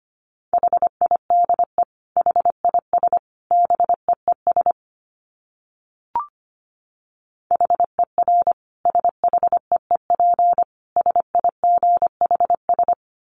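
Morse code at 25 words per minute: a steady mid-pitched tone keyed into quick dits and dahs, sent in two bursts separated by a few seconds of silence broken by a single click.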